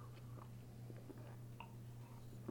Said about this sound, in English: You know, I'm going to take a sip of my beer first, because I'm going to go off on a long-winded rant, so pardon me.